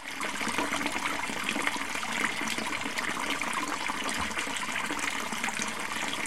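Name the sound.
flowing water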